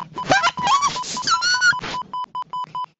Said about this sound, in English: Hey! High pitched, little mousy mouse voice.